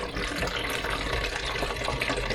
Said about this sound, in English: Is me pouring out my stop bath. That was really loud. I am so sorry.